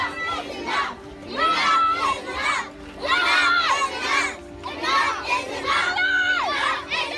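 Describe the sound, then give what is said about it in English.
A crowd of children shouts together at a children's protest march held in July amid protests over Philando Castile's death. The high-pitched collective cries come in loud, rhythmic bursts, like a marching chant, with short pauses between them. “There was a children's march.”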